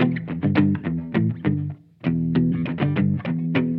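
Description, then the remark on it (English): A mellow, dark-toned electric guitar, played on its neck pickup with the tone controls turned down, plays a quick run of plucked notes, pauses briefly, then continues with another phrase. It's fairly loud, with no voices. “Okay, if I turn down my tones and go to the neck so we can get the most neckular sound.”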